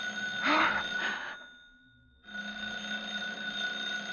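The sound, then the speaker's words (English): A telephone bell in an apartment rings loudly at 11:30 in a sustained metallic trill, stops for a brief pause, then rings again. No one speaks. “I was standing next to her at 11:30 when the phone rang.”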